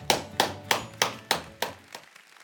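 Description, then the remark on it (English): A run of about seven sharp claps in a steady, even rhythm, moderately loud, trailing off softer at the end, as an audience stands to applaud a speaker. No voices are heard. “Would you stand to your feet together today and clap for my friend”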